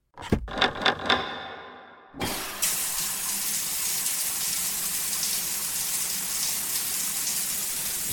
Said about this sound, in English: The tub slowly begins to fill with water.